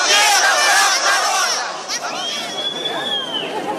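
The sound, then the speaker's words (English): An angry crowd at a pro-Russian rally in Lenin Square, Donetsk, shouting as they denounce Akhmetov; many loud raised voices blend into a continuous roar. A few voices briefly rise higher in pitch above the mass of yelling. “At a pro-Russian rally in Lenin Square, Akhmetov was denounced by an angry crowd.”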